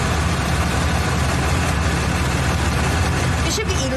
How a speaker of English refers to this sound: It should be illegal to have a truck this big.